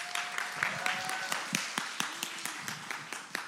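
An audience's round of applause: a steady patter of many hands clapping at a moderate level for a few seconds, with faint murmuring voices and a brief tonal hum underneath.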